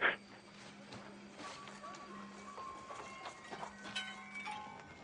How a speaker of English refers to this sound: Gotta love those bells or whatever that yeah. sound is. Why'd you do yeah, that? Weird creepy clanking bells.